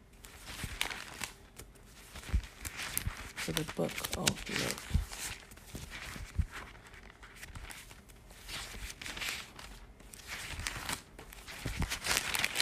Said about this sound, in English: I have my Bible in front of me, just turning the pages.